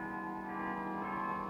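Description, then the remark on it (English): A carillon recital on Parliament Hill, Ottawa, for Canada's Diamond Jubilee, carried live by Canadian National Railways radio stations: bells ring out in a steady, sustained wash of overlapping tones, their rich metallic overtones hanging in the air at an even, moderate loudness with no voices. “It began with a carillon recital.”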